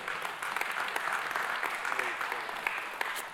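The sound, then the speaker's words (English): A crowd at the Father's House applauds steadily, many hands clapping in a dense, continuous patter that holds at an even level from start to finish, with no voices rising above it. “Give him a hand clap.”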